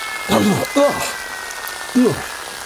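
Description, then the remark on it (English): A steady hissing spray of cold water from an emergency fire hose, turned on an unresponsive person, runs throughout while a person lets out three short, sputtering vocal cries over it. “Some cold water? Panel strain! Emergency fire hose!”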